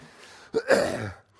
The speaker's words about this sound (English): First, excuse me, I'm fighting. The cough is just right there on the edge. I'm trying to hold it back because that would sound gross in the microphone.